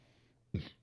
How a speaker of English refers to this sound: Ow. What happened? I held in a burp, and it burnt. Interesting. That hurt. All right. You see that? Yeah. You ever drink a lot of soda, and then when you go to burp, you don't open your mouth, you just kind of do it through your nose?